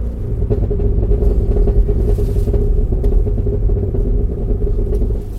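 A big SUV V8 engine burbles loudly, its deep steady rumble peppered with sharp exhaust crackles and pops throughout, with no voices.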